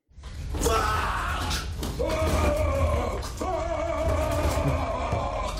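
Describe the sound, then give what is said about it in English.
A man lets out a loud, strained roaring scream, mocking a roided-out muscle guy like the Hulk, sustained for several seconds with a couple of brief breaths between raspy, guttural bursts. “Like if I told you, hey, how would the Hulk say fuck? Screaming, you would do the same thing, like whatever.”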